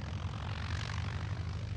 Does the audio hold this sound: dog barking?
no